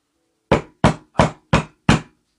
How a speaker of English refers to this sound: When there's a knock at the door, he pulls out the pocket watch.